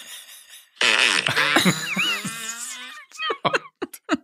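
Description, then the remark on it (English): A long, loud, sputtering fart sound effect played from a fart app on a phone, with a rising squeal in the middle, followed by a string of short, quick flappy bursts that trail off, tinny as if from a phone speaker. “Wait, I got something better. No. I do. She's got a fart app.”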